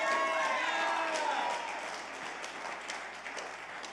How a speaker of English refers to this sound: You could clap louder than that because it is the truth.